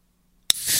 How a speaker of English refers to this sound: So for the Zevia crew out there, I'm going to open up my Zevia can right now.